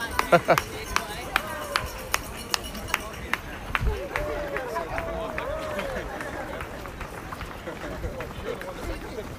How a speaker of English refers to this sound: So, We're passing a huge apartment complex with people out on the balcony cheering on. You can hear the cowbell ringing.